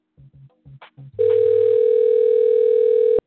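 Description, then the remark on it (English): A telephone ringback tone during a call: a few short low beeps, then a loud, steady electronic tone holding for about two seconds before cutting off abruptly, with no one talking. “Let me try and see if I can get him on the phone real quick.”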